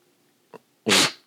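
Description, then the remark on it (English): A single loud, sharp nasal sniff, a quick rushing burst of air through the nose, preceded by a brief faint intake of breath. No one speaks. “Okay, but since we're doing 90% less, that is the only sniff can have for the entirety of the show.”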